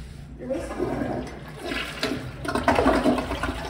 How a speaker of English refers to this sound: Guys, okay, let's do a demonstration. Does the toilet flush?